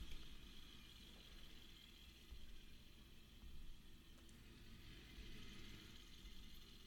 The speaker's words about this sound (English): Is that Jeff's truck or Joe's? I don't know. Trucks. Sounds like a little dick truck.